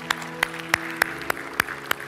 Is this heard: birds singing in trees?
no